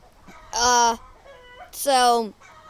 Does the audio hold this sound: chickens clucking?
yes